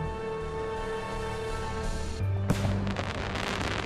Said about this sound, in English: But anyway, it's Guy Fawkes night. We're in London. And there's all these fireworks everywhere